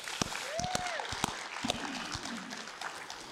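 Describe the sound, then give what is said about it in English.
A church audience in Kings County claps steadily for a few seconds during a morning service, a dense crackle of many hands at an even loudness, with a brief rising-and-falling whoop or cheer early on. “Round of applause here.”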